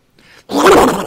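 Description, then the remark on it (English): A person does a Donald Duck voice impression: a soft, breathy lead-in followed by a loud, raspy, gravelly squawk that lasts about half a second, with no clear words. “That's your Donald Duck noise.”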